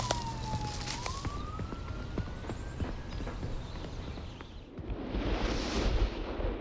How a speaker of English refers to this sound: The squad car speeds off.